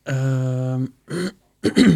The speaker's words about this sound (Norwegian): Jeg har en fæl hoste I dag, altså.